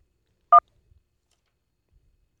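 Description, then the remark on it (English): A single short phone keypad tone, the dual-pitched DTMF beep of one button press on a caller's phone during a phone call, sounds clearly and loudly, followed by near silence with only a couple of faint low thumps. “Something's going on with your phone, Levi. You punching all kinds.”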